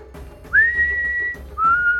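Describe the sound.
Two clear, sustained whistled notes from a hamster, the first swooping up and holding steady, the second starting lower after a brief pause, fairly loud over faint background hum.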